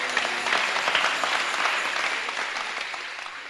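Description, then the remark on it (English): A crowd claps steadily, a dense wash of many hands that holds fairly even and then slowly thins and softens toward the end. No one speaks over it. “Give him a clap.”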